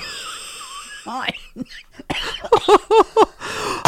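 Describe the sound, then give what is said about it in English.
A woman's coughing fit: a quick run of five or six harsh, wheezy coughs, preceded by a raspy gasp and followed by a rough, strained breath. “that was that good that she's coughed up a lung.”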